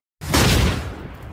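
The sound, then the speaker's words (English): A single loud, booming gong strike after a moment of silence, its broad crash swelling and then ringing out with a deep, lingering decay. “Banging the gong.”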